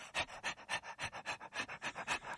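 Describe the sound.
A person imitates a dog panting: quick, breathy huffs in a steady rapid rhythm, about five per second, fairly loud, with no talking.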